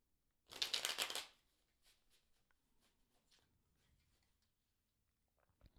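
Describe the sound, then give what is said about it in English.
A quick, loud riffle of a deck of tarot cards being shuffled, a dense burst lasting under a second, followed by faint scattered taps and rustles as the cards settle. “That was not a good shuffle, so I'm doing it again.”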